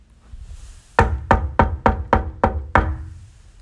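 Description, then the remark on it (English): Seven firm knocks on a wooden door, evenly spaced in a quick steady rhythm, fairly loud, with quiet background before and after and no voices. “Suddenly, there was a knock at the door.”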